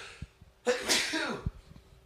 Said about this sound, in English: But this was like, I'm going to sneeze.